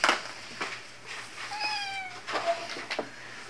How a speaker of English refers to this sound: Oh look, a cat appeared.